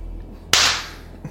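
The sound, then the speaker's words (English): A single sharp hand slap, like someone high-fiving themselves, rings out with a bright crack and a short fading tail over a low background hum. “I like that you just high-fived yourself.”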